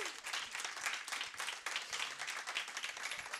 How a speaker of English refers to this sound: Friends, I'm going to invite Zelna up. Can we give Zelna a massive round of applause?